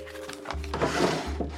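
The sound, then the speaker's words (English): An office desk drawer slides open and shut as a list of messages is put in it, a brief wooden scrape and rumble, moderately loud, over a low steady hum. “I put the list of messages in my drawer, locked up the office”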